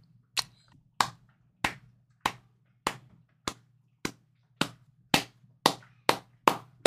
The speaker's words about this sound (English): Slow clap. Slow clap.